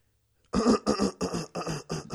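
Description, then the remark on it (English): A person clears their throat several times in quick succession, a series of rough, raspy bursts with short gaps between them, no talking. “Just had to clear my throat.”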